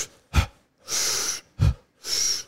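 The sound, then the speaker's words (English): Two cycles of forceful, rapid breathing in a deliberate hyperventilation breathing demonstration: sharp, low-heavy inhales alternating with longer hissing exhales, a quick steady rhythm, with no talking. “Ooh, you're kind of hyperventilating.”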